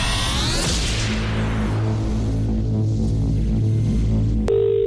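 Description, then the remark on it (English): An outgoing call to a competition entrant rings out, low buzzing ring tones pulsing in a steady pattern over a humming line after a brief rising whoosh, ending in a sudden steady tone. “Now, we're going to call you. You get two chances to answer your phone, otherwise we have to move on.”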